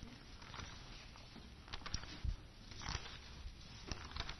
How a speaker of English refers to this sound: I love to hear those pages turning. Reminds me of the Bereans.